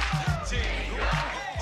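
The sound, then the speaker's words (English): A large crowd roars and chants together, joining in with a song being performed, many voices blending into a dense, loud wash of cheering and group singing that carries on steadily throughout. “Like the whole crowd's getting into it.”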